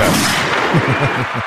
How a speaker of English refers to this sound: Get that gunshot. There you go.